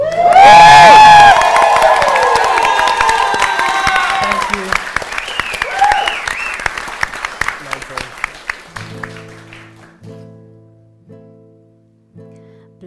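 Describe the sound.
A crowd erupts in loud cheering, whoops and applause that gradually fade over several seconds; a single voice briefly speaks, and a few soft musical tones follow at the end.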